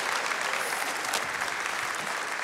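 Steady applause from an audience for a person making his way up onto a stage, a dense wash of overlapping claps that stays loud and even for the whole stretch with no voices breaking through.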